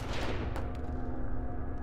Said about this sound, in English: The gunfire and explosions outside were enough to drive anyone mad.